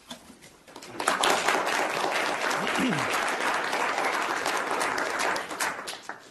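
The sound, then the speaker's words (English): An audience breaks into steady applause welcoming a speaker on risk assessment of the cardiac patient in non-cardiac surgery, after a brief quiet start, a dense crackle of many hands clapping at an even level for several seconds before easing slightly at the end. “You don't have to clap.”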